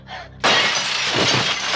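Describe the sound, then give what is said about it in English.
A loud crash of a glass patio door shattering as a woman throws herself through it erupts after a brief softer sound, followed by a sustained bright spray of tinkling, scattering shards that continues to the end. “She's just, like, winded, I assume, from jumping through a glass door, so she doesn't stand up.”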